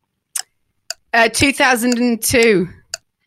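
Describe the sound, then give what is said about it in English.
A quiz clock ticks in sharp, evenly spaced clicks, timing a quiz question, with a sustained voice-like tone briefly covering the middle of the sequence before the ticking resumes. “Start the clock.”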